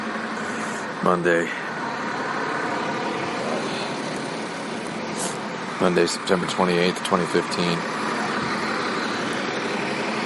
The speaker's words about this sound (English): I was waiting for a bus here. Birmingham Airport. I waited for 3 hours to get on a bus that is going to take 2 hours to go from Birmingham Airport to Heathrow Airport